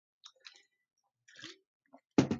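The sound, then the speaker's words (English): A preacher drinking water during a church sermon: a few soft, wet sipping and swallowing sounds in short bursts, then a louder, fuller gulp-like burst at the end, with no talking. “I'll grab a little bit of water here as you turn your Bibles there.”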